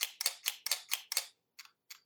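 A camera shutter fires in a rapid burst of six crisp clicks, then two more isolated clicks after a short pause, fairly loud with no talking, demonstrating fast and slow shutter speeds in manual mode.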